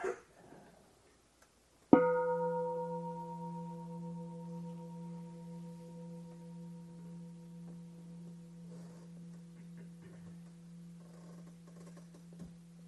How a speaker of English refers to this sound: So let's start with the bell, with the bell, just listen to it. Just listen until you can't hear the bell, and then see what you hear when you can't hear the bell.